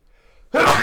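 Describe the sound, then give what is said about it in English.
A sudden, loud burp and sneeze erupt together in one explosive burst after a moment of near silence, ending abruptly. “Did you burp and sneeze?”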